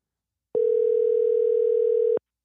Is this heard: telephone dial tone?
yes